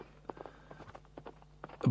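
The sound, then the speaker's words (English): A horse-hooves sound effect: hooves clop in an uneven run of short, hollow knocks, some quieter than others, ending with a louder, heavier thud. No one speaks. “Oh, let me turn that horse sound effects up and we'll step outside.”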